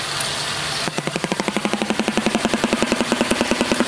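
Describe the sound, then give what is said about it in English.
A shoebill stork's rapid, machine-gun-like bill clatter: a steady train of sharp wooden knocks, about eight per second, following a brief hiss and holding loud and even to the end. “They make a dinosaur sound.”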